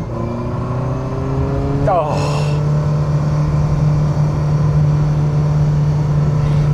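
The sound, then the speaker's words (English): The small-displacement engine of a small, light sports car revs hard under added power with a thrashy, high-pitched whine, its pitch climbing sharply before settling into a steady loud drone. A voice briefly exclaims over it. “The sound of this engine is very thrashy, very high-pitched. You can tell it's a small displacement engine.”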